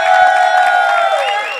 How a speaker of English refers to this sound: Ladies and gentlemen, keep that applause going for Gina Brillon.